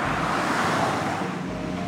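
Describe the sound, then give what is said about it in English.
Steady street traffic fills the air with a broad, continuous roar of passing vehicles and an engine hum, with no voices, as a D4 bus approaches from a couple of blocks away. “Just stepped out on the street and I see a bus a couple blocks away.”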